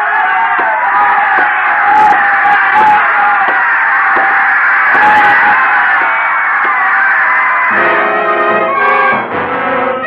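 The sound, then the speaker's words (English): A loud, dense crowd screams and roars without letup, a wall of overlapping voices; near the end the din shifts toward a more tonal, sustained wail. “The crowd was screaming for the kill as I walked out.”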